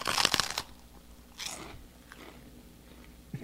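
A crisp bite into an empty ice cream cone: a loud, crackly burst of crunching, then a second, softer crunch a moment later, with no one speaking.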